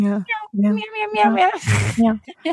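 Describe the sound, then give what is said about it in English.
A voice imitates a cat, a meow credited to Rob Benedict, making several drawn-out, gliding meow sounds, with a short breathy hiss partway through. “Some of them were, who had the meow?”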